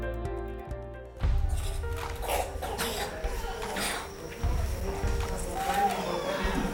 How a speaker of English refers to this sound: Can you hear them coughing? Can you hear that deep chest cough? Because the resistance is so low that the least little thing becomes a serious life or death issue for these children.